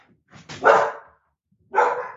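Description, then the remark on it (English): Two sharp barks from Daisy, a 10-month-old puppy, the first longer and louder, followed by a brief pause and a second shorter bark, with no talking over them. “What's the dog's name?”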